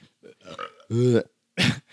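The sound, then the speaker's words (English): A loud burp rumbles for about a third of a second, followed shortly by a second, rougher burst, with a few faint mouth and voice noises just before. “I'll give you a sympathy burp.”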